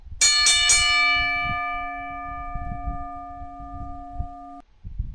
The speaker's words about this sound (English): Somebody tell me to ring the bell.